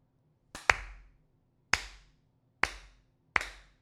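A few slow, sharp hand claps, about a second apart, the first one doubled into a quick pair. Each is crisp and moderately loud over a faint low hum, with no talking.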